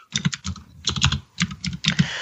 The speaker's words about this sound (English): Someone's typing very loudly.